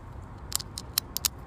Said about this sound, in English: That's a pen clicking.